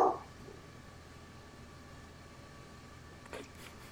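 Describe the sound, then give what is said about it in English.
A single sharp dog bark cuts in right at the start, loud, then fades into a quiet hum with only a faint brief sound near the end. “Whose dog was that?”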